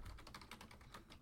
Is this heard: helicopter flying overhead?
no